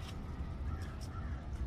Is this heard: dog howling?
no